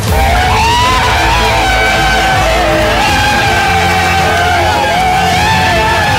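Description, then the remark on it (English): A dense crowd of Brazilians on a beach yelling, screaming and cheering all at once, a loud continuous roar of many voices with shrill rising shouts cutting through, sustained without a break. “Ooh, on the beach, she was pandemonium.”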